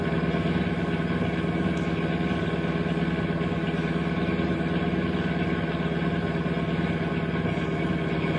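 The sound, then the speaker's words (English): A car engine runs steadily throughout as the car pulls alongside another car, a constant rumbling drone with a low hum and no pauses, heard on its own without any talking. “Don't stop the car. Yeah, there's the signal. Pull alongside, pal.”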